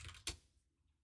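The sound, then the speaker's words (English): A brief burst of mechanical keyboard typing: a few quick, clacky keystrokes with one sharper strike, fairly faint, fading into near silence with no voices. “I hate that I could hear you typing.”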